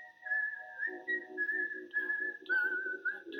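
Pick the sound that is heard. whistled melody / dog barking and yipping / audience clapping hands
whistled melody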